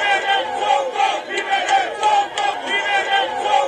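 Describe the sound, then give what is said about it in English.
A large crowd of Sonko's supporters chants "Free Sonko" together outside the court before his release, in loud, rhythmic bursts, many voices shouting the slogan over and over with a steady, pulsing cadence. “Supporters of Sonko shouted "Free Sonko" outside the court before his release.”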